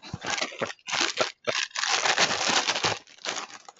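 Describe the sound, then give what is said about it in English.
A box of Lucky Charms-inspired Lucky Charms cereal being opened: bursts of crinkly paper and cardboard tearing, a few short rustles with brief pauses, then a longer continuous crackling stretch. No one speaks. “I'll put it up toward the mic, but I'm going to open up the box of Lucky Charms inspired Lucky Charms.”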